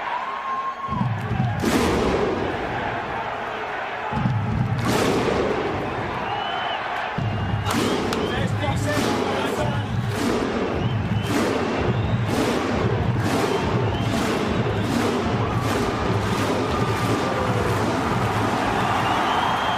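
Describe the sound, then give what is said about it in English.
A stadium crowd at a rugby league match performs a slow unison clap as Croker takes the Blues team down the tunnel: a few widely spaced, booming claps, then a steady rhythm of loud claps about once a second over a constant crowd roar. “We stand by for the clap.”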